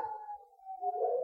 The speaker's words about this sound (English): You hear them, Mr. Harker? The wolves?